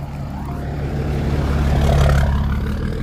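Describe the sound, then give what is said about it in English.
A neighbor's oversized truck comes around a corner on a country road, its heavy engine rumbling past with a deep, steady drone that swells slightly louder midway and then eases off a little. No one speaks. “Almost went off the road when a oversized truck came around the corner.”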